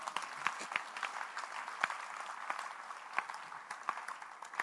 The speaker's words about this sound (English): Clap for the Lord Jesus.